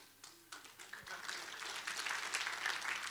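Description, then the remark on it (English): A crowd breaks into applause, many hands clapping in a dense, steady patter that builds and holds at a moderate level for a few seconds. “You're clapping for yourself because I want to compliment you for giving because you put your money where your heart is.”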